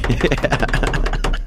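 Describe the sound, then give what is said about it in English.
A voice mimics cartoon running footsteps, a xylophone-like sound with a little slap to the ground, as a fast, steady string of clipped, percussive mouth sounds, rattling along for about a second and a half at a fairly loud level. “And you would hear like cartoon footsteps.”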